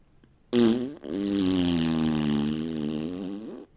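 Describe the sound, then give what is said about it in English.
A loud, long, buzzing fart ripped into a bag, starting with a sharp burst, briefly breaking, then rumbling on steadily for about three seconds before cutting off. No one speaks. “Then he ripped a huge fart into the bag.”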